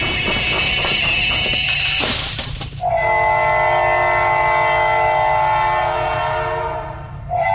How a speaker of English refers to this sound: We hope you enjoyed the ride on our Heritage Railway project, and hope you'll join us again soon.